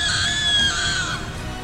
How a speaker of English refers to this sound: You backed away as Kajimi screamed.